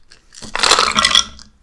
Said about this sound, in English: What am I rolling? Just roll all the dice. All the dice? Yeah, roll all the dice.